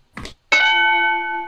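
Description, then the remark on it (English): A short rustling clatter, then a single bright bell, rung for a drinking game, strikes and rings out clearly and sustains, its tone fading only slightly over the next second. “Titled, Get Your Drinking Bell Ready.”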